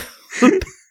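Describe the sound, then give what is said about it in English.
A single sharp sneeze: a short voiced build-up followed by an abrupt, breathy burst that cuts off quickly, with no talking around it. “Bless you.”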